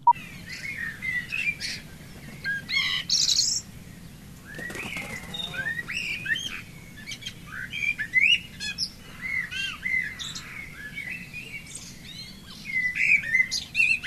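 A dense dawn chorus of many songbirds, overlapping chirps, trills and whistles from several directions, with a low steady rumble underneath and an occasional soft coo and brief flutter of wings.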